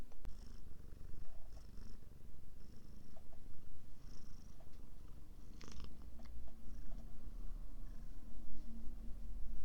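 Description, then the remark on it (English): A pet cat named Lucifer Sabrina, also called Lucy, purrs steadily, a low continuous rumbling drone with a soft rhythmic pulse, punctuated by faint clicks and small rustles, with no talking. “I don't know if you can hear that, but that was a brief purr interlude brought to you by my cat, Lucifer Sabrina, also known as Lucy, Lulu, Lululemon, or a little butt nug that fell out of somebody's butt.”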